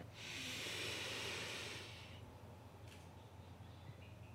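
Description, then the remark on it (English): A long, airy breath drawn in for about two seconds, followed by near silence as the breath is held. “Let's take a deep breath together again.”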